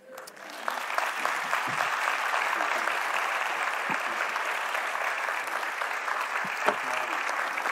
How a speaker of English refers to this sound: Yeah, let's give God a hand clap. Yeah, thank you.